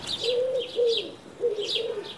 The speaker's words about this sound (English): They're very similar, but that's the one I meant. It's the second one that I was doing. That's the wood pigeon.